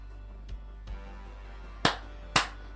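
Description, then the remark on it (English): Two faint taps, then two loud, sharp hand claps about half a second apart, each with a brief ringing decay, over a steady low hum, made in an office to test for clap-on lights; the lights do not turn on. No one speaks. “Do you guys think it's clap-on lights?”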